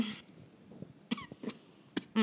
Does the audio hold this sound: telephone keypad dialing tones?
no